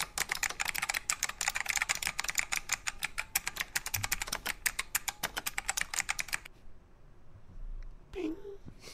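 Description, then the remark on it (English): Rapid, steady clatter of someone typing an email reply on a computer keyboard, fairly loud, running for several seconds before stopping abruptly, followed by a brief murmur of a voice. “Are you typing an email to, you see the note from Pimento?”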